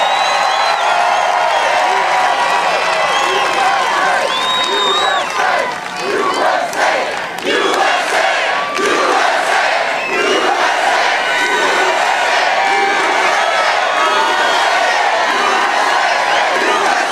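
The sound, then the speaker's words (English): A large crowd at a political rally roars continuously, a dense wall of cheering and shouting voices with scattered whoops and some clapping, loud and sustained throughout without a break. “You could hear how loud the crowd is there.”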